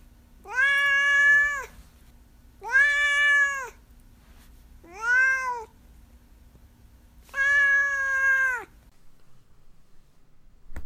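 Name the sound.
cat meowing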